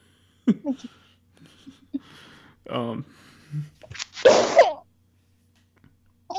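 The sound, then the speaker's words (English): A single loud sneeze bursts out with a sharp explosive rush of air, following a few short murmured voice sounds and a quick inhale; brief talk resumes faintly afterward. “Bless good. You. Bless you.”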